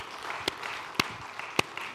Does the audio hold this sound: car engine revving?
no